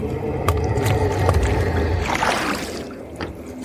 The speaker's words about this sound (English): The ferryman accepted the coins and began navigating the raft towards the shores of the mouth of hell.